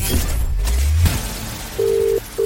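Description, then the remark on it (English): A phone line with a low hum and faint clicks, then a steady electronic tone sounding twice in short bursts as a call is placed to a radio cash-prize contestant, with no voices. “I'm about to make the 1 million pound cash register call across the Hits Radio Network”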